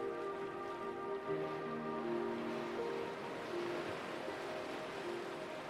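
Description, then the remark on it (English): A steady, hissing wash of ocean surf breaking on the shore rolls on without pause, blended with soft sustained musical tones humming underneath; no one speaks. “Breathe in deeply and imagine the waves approaching the shore.”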